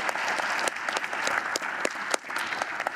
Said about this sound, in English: And so if you guys would just give them a round of applause, we're so thankful for them.